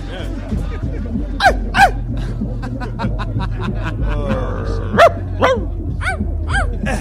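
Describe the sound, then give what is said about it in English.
A voice imitates puppies with a run of high, yelping barks in quick pairs and clusters, fairly loud, over a steady low hum and some talking. “The puppies have been released here.”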